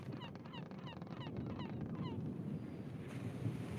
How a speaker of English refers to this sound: And she will release the seagull off towards the Grangle Jungle, hopefully.